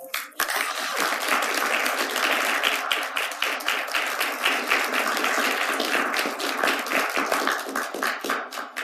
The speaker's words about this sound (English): With every noted accomplishment, the crowd claps softly.